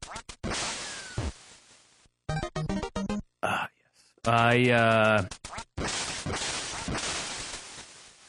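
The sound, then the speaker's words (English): A burst of bright, buzzy electronic quacking with a sharp whip-like crack, in loud short chunks, followed by a long wavering synthesized tone: duck sounds from the video game Duck Hunt. “I really like the game Duck Hunt, but recently my girlfriend told me that I spend too much time playing Duck Hunt.”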